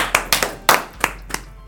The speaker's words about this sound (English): So I'd like to give y'all a round of applause first. Thank you so much.